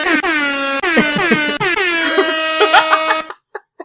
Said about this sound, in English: We're really going to punch up this episode. It's the same episode, but we put air horns over it. Listen to this!